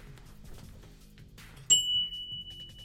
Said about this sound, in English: The Mike White bell. I'm ringing it.